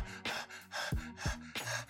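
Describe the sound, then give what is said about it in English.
A voice imitates bicycle pedaling with rhythmic, breathy panting: about five quick huffs in a steady cycle, moderately loud, with no words spoken. “I gotta come up with a better special effect than that. People are like, what? Is my dog? Is my dog panting near my leg?”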